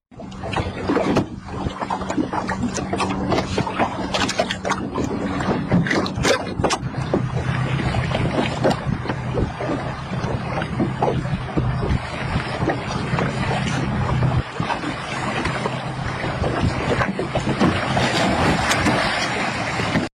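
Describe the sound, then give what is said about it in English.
Wind gusts across the microphone over open water while an exact replica of Scott Peterson's 14-foot fishing boat knocks and sloshes in a reenactment, a steady, loud rumble with scattered clunks and no voices. “For our listening audience, it shows an exact replica of Scott's 14-foot fishing boat and a man in scuba gear.”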